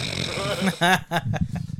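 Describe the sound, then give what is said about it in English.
A person mimics snoring with their voice, making a rough, buzzy rumble followed by a short nasal snort, loud, with some talking mixed in. “The betrayal I felt when I heard that first snore.”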